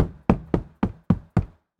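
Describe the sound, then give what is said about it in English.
A hand slaps a mattress six times in a quick, even rhythm, each hit a dull, muffled thump that dies away fast, with no voices. “Okay, this is your mattress.”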